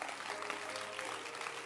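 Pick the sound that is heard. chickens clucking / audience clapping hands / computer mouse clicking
audience clapping hands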